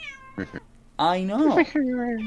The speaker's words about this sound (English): Shut the fuck up, cat. You just meow at me, but won't come over here.